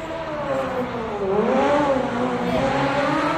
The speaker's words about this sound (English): Why don't we bring the car out?